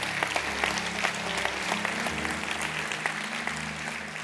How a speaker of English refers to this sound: Come on. You can clap. Amen. You can clap.